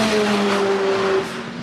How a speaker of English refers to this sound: Class leading Hyundai Veloster making all that racket just there.